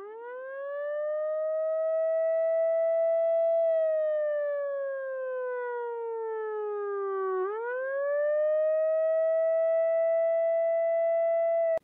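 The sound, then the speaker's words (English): A loud, continuous wailing siren that slowly rises and falls in pitch, sweeping down and then climbing back up, sustained without a break and with no voices. “and then, like, the image sort of loops and repeats, so then the stomach fills back up and then melts out again, and you hear this just wailing siren the whole time.”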